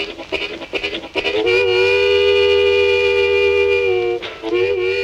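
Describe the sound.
A harmonica imitates a speeding train: quick rhythmic chugging puffs, then a long, loud, sustained wailing chord like a train whistle, which breaks briefly and starts again.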